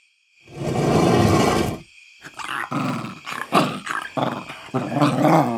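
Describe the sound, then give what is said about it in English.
A dog growls low and steadily for about a second, then lets out a series of rough, throaty snarls and grumbles, loud and unbroken by any voices. “Ignored the dog's growls and sat by the window, looking for answers and waiting for them to return.”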